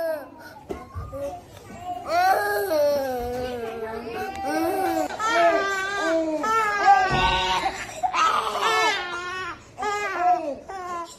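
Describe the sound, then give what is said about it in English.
Several infants in a hospital nursery wail at once in loud, overlapping cries that rise and fall continuously, a chorus of distressed babies that begins after a brief quiet moment and keeps going. “There were videos showing hospital nurseries where toddlers and infants were being held with just a few attendants around to take care of them.”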